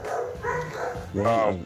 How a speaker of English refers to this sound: Those are my dogs, man.